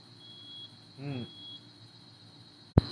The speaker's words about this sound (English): Fucking neighbor's smoke alarm went off. Finally.